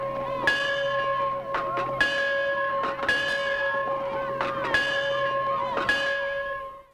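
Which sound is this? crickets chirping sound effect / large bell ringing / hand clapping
large bell ringing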